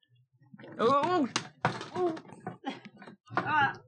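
A person falling out of a chair: a few dull thunks and a short clatter mixed with strained, wordless cries and groans rising and falling in pitch.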